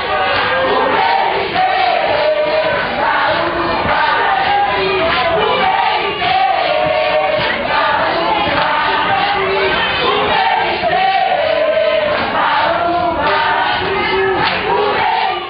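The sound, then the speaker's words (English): A large crowd of Haitians sings together loudly inside a tent in Port-au-Prince, people dancing and jumping up and down, their voices merging into a dense, steady roar, with rhythmic clapping running through it for the whole stretch. “I remember panning my camera around, and I just see this crowd of people singing and dancing in the center of the tent.”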